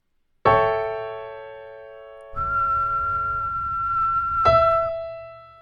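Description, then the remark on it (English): A piano note rings out and fades, then a steady, breathy whistled note, the fifth above the root, holds alone for about two seconds before another piano note strikes over its end. “All right, I whistled that one there instead.”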